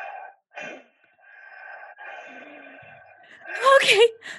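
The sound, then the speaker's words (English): A Foley artist's voice imitates eerie, drawn-out breathing: slow, raspy inhales and exhales, building into a louder gasping, moaning breath near the end. “You're awoken by breathing.”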